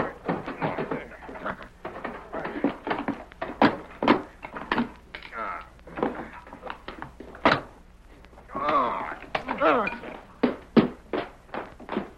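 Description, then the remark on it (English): A metal bar pries at a locked door, producing a rapid, irregular series of sharp clanks and heavy thunks, with a brief voice partway through. “Hey, let me get this bar in the lock. I'll pry it open.”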